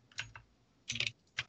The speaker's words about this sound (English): This keyboard is so loud.